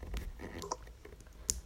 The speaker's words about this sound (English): Sorry if you just heard me slurp, I'm drinking tea.